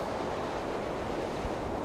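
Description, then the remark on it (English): Hurricane wind whipping around a car: a steady, loud roar of rushing air with broad hiss and low rumble, no gusting breaks, and no voices. “Ernest peers over the hood of the car as more wind whips around them.”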